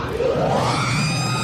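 A loud electronic scream from the droid R2 of Star Wars, a shrill synthetic wail that sweeps steadily upward in pitch over about a second and a half, with no voices alongside it.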